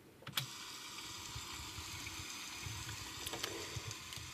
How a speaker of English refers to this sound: And over time, so over the training period, that pitch gets sort of softer and softer and just merges and is embedded within that rain sound. So what I can do is I can show you. So we have the rain sound.